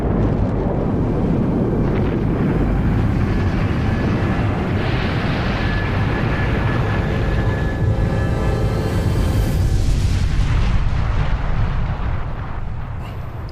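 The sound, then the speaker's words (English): A massive, continuous rocket launch roar of the Apollo 11 blast-off, a deep crackling rumble that stays loud and dense throughout, with harsher hissing surges layered on top before easing slightly at the end. No voices. “In less than 1 hour, if all goes according to plan, the three members of the Apollo 11 crew will blast off in their...”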